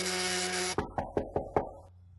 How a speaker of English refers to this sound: Then, your phone buzzes, and there's a knock at the door.